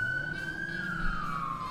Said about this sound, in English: Now, I remember, all right, Holding for Siren. Oh, what a lovely soundtrack.